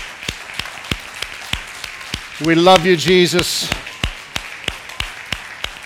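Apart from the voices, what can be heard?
audience hand clapping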